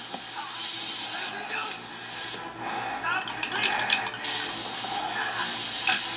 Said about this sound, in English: He's like, what is that? Is that spray paint? Because I can't really tell.